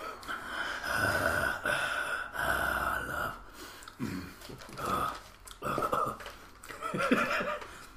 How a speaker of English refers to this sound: That laboured breathing you hear in the background is Boo.